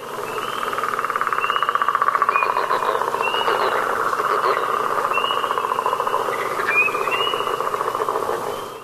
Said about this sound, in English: The male leopard frog, northern and southern, has two vocal sacs that he fills with air like balloons, which amplifies the sound of his voice and makes it much louder. This is what a northern leopard frog sounds like.